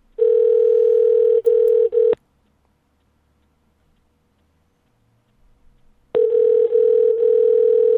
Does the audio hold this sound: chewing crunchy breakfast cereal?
no